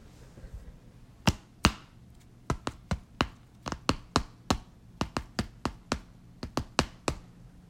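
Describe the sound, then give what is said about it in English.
A typewriter clicking away in an uneven run of sharp, bright keystrokes, roughly twenty strikes with short pauses between bursts, over a faint low hum and no voices. “Typewriter clicked away.”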